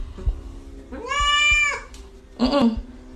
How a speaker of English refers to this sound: If you're happy and you know it, say meow.